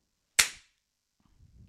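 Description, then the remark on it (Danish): A single sharp clapperboard clap, a bright wooden crack that dies away within a quarter second, followed by silence and then a faint low rumble of handling noise. “Der er virkelig meget pres på det her klap hver gang, synes jeg.”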